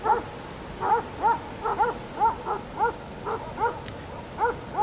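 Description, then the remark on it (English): Dogs bark in a steady run of about a dozen short, yelping barks, moderately loud, over a constant background hiss with no one talking. “Especially in these dogs expressing themselves.”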